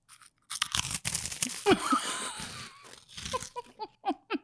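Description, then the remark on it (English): Loud crunching of an airy, aerated chip-like snack: a dense burst of crackly bites, then a quieter stretch with a few softer, scattered munches and chews. “It's more aerated. Yeah, and there's the crunch, but then there's texture in between it.”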